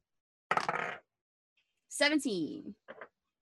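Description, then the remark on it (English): A brief clatter of dice tumbling across a hard tabletop for about half a second as a tinker's roll is made, coming up 17, followed by someone speaking briefly in the quiet afterward. “Give me a tinker's roll.”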